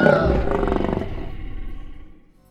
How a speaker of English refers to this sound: Into the lion cage!